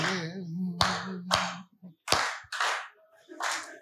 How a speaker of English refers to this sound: you clapped your hands.